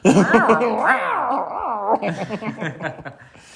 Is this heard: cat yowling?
yes